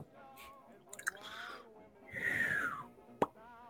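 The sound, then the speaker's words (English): A person exhales in one breathy rush lasting about half a second, with a faint whistling tone that slides downward in pitch. Small mouth clicks come before it and a sharp click follows. “Well, I wasn't trying to make a bird sound. I was just exhaling.”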